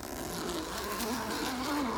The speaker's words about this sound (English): And I'll zip my tent up too.